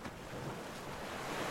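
Ocean surf roars steadily with a broad, hissing wash of waves and some wind, fairly loud, with no voices present.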